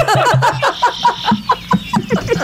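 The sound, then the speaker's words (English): A small emu calling: a quick series of low, throaty grunting pulses, about five per second, in a steady clucking rhythm that stays fairly loud throughout. “Yeah, that's the sound they make. That's very prehistoric.”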